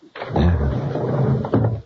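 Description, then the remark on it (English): A door opens and closes, with a rattling, creaking sweep followed by a second knock-like bump as it shuts, heard alone without voices. “I told you to keep that door closed.”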